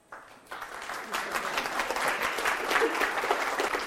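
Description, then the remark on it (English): An audience breaks into applause at a speaker's remark about not starving children of spiritual things, building quickly from a few claps to steady, dense clapping that holds at a moderate level throughout. “I didn't mean to get an applause on that.”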